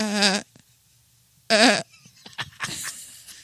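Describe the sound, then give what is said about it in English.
A sheep bleats twice, two short wavering loud baas about a second apart, followed by some faint rustling and muffled noise. “The sheep says, baa.”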